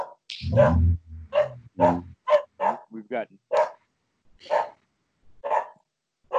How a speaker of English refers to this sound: We've got strangers in the yard. The dogs don't know these guys.